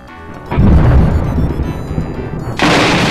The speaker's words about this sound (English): either name your 5 favorite Star Trek characters, or hit the lightning round sound so we can settle tonight's episode.